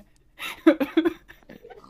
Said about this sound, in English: Whoa! What the heck is this? Piggles? And there's pigs?